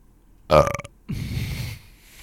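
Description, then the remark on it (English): A loud burp, short and guttural with a croaky, voiced rasp, followed by a second of breathy, hissing noise before it fades to quiet. “Should we cut that burp out?”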